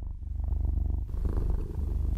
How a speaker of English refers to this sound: So you guys know the drill. Sit, purr. We'll be right back.